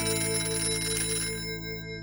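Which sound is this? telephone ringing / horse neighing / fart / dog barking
telephone ringing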